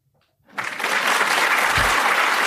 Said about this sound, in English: Can you hit the applause button.